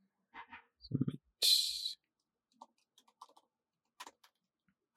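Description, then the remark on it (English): Two dice are rolled for a fortune roll: a quick rattle and a brief hissing shuffle, followed by a scatter of light, sharp clicks and taps as they tumble and settle on a hard surface. “Two dice.”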